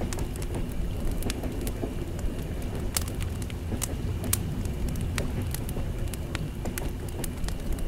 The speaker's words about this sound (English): Well, we've got a nice fire. We're in one of the cars here, one of the train cars.